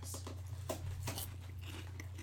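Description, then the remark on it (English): Crisp crunching as a snack is bitten and chewed, with several sharp crackling bursts in quick succession over a steady low hum, no talking. “Crunch. Ooh, they are hot.”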